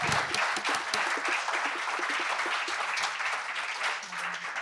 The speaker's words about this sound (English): Yeah, well, we should give a big round of applause